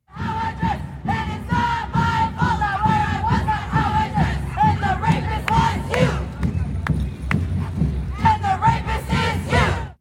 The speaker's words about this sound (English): Here's a shot from the Women's March of whole scores of people, I don't know, maybe 100 or 150 people out there, dancing and yelling and rapping and saying poetry about how we're all a bunch of rapists. Here they are.